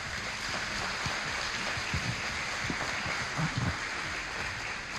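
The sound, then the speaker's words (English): An audience applauds the judges at an evening event: a dense, steady wash of many hands clapping at an even, moderate level for the full five seconds without fading. “Let's give a round of applause to our judges.”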